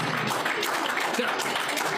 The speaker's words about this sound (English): Clap your hands if you believe.